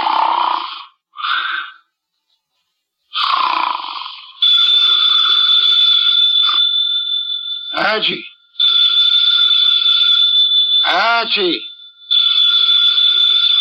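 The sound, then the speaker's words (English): A telephone on a desk in Nero Wolfe's office rings in three long, loud, shrill bursts, each held for a few seconds. A voice calls out before the ringing starts, and short snorting grunts made through the nose fill the gaps. “The phone, if you please, Mr.”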